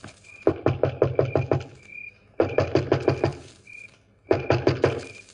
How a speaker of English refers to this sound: Stand where you are, and I'll go knock on the door.